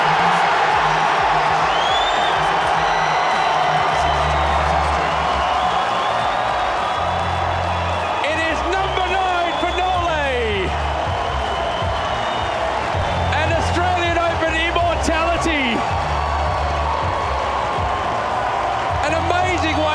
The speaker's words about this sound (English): He touches the courts and he accepts the applause from this crowd.